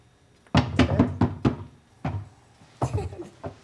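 Heavy banging on a locked condo door: a rapid burst of five or so thuds, a pause, then a few more irregular blows, loud and resonant with no other sounds between.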